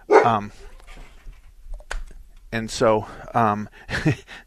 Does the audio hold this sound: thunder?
no